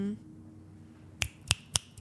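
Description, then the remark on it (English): Four crisp finger snaps in quick, even succession, each a sharp bright crack that stands out over a low background murmur following a quiet stretch. “I'm snapping, clapping.”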